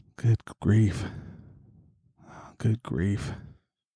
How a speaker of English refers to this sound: There's my breathing again.